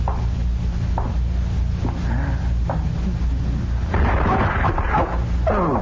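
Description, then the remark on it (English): A heavy flower pot falls on a stage and knocks a man over, smashing with a loud, rumbling crash, preceded by a few dull thumps and followed by a short scatter of clattering debris. “No. Something fell over me. I started across the stage and something knocked me over.”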